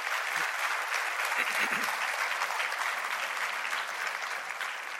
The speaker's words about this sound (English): Okay, wait, before you go, you can clap.